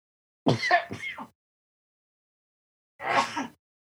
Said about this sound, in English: Sneeze attack. Sorry.